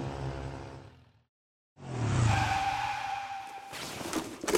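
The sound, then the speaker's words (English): A police motorcycle's motor revs up and it pulls away fast, tires squealing in a sustained high screech before a final rushing swoosh, loud with no voices, as Sheriff Labrador drives Ms. Lop Rabbit to a tin shack outside of town. “Sheriff Labrador immediately hopped on a police motorcycle and drove Ms.”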